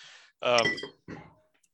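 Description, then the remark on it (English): An unopened Coke Zero can is nearly knocked over, bumping and clinking against a hard surface in two quick bright rattling bursts with a short ringing tail, fairly loud. “Careful. You might knock over a glass. I almost knocked over a Coke Zero, but it was unopened.”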